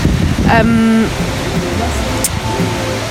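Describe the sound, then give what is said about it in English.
Strong wind roars steadily across the microphone in a dense, rushing wash on a hill, with a brief low droning call near the start that sounds like a cow lowing. “It's very windy here. We just walked up the hill and everyone got blown over.”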